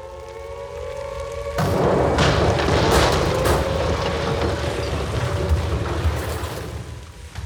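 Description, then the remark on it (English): After a brief steady hum, a sudden blast of Blitz bombing explosions at the Parnell factory in Yate erupts into a loud, sustained roar, with several heavier booms cracking through in the first few seconds before the rumble slowly eases. “And after that little bit of historical info, it's time to return to our tale today of the Blitz bombing of the Parnell factory in Yate.”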